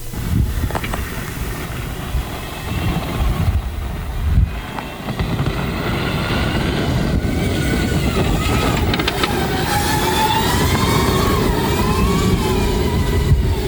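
A Jeep Wrangler 4xe drives in all-electric mode with a high motor whine that rises and bends in pitch over steady rumbling road and wind noise, continuous and fairly loud throughout.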